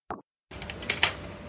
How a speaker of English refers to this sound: That's a good unlocking sound. That's a good squeaky door opening sound.